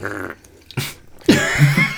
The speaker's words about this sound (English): Mouth fart. That was a lipular. The old slurpulation. Lipular slurpulation.